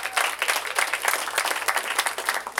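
A comedy club audience at a club on South Street breaks into steady applause, dense clapping filling the whole stretch at a strong, even level with no voices rising above it.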